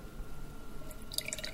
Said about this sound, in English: Now I'm pouring for you our apple juice rouge. It's a single variety apple juice and a very special one. It's a red apple juice. The color comes from the apple, but the apple is not just outside red, but inside, so the flesh is also red.